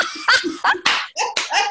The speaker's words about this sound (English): Wait, see, I travel with my own applause. Can you hear that? I travel with my own applause. Okay. You have to clap for yourself sometimes.